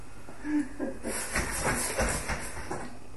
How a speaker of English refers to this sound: Get that all sizzling up there. And a bit of chicken stock.